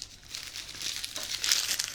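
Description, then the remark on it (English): Dry papery rustling and crinkling churns continuously for a couple of seconds as slips of paper are shaken around inside a box, fairly loud, with no talking. “Shake box.”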